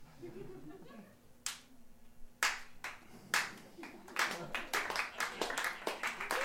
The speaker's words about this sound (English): I wasn't expecting the slow clap.